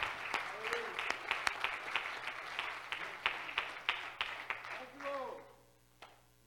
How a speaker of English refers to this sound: Somebody say amen. Clap your hand to the Lord. He's worth.